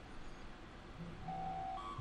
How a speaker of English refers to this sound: Ooh, what was that? Boo-doop. Don't you think you should silence your phone before we get the show started?